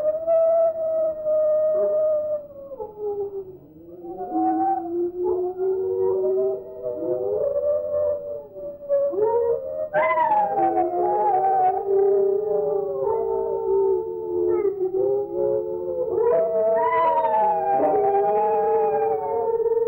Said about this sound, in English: All right, so we're going to try and play the song for you, or their howls, I should say. It's not really singing. It just sounds a bit ethereal, like singing.